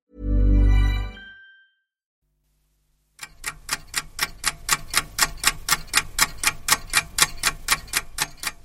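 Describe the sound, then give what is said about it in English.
A small alarm clock, shown flying downwards on an Apple Macintosh computer, ticks steadily in a converted attic flat in Rathmines: a quick even rhythm of sharp clicks that starts after a brief low tone and a moment of silence. “The ticking of the small alarm clock, flying downwards on the Apple Macintosh computer, breaks the stillness of my Rathmines flat.”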